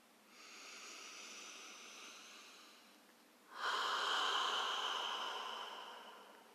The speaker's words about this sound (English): Let's breathe for a second, then we'll go, okay?